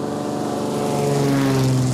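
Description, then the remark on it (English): A small propeller plane's engine drones steadily and loudly, its buzzing hum rising slightly in pitch partway through as it revs, with no voices present. The plane is at an improvised airstrip in an area with no roads and carries sacks of jagua fruit on an hour-long flight to Medellin. “With no roads, the only way to send the jagua for processing is an hour-long flight by small plane to Medellin.”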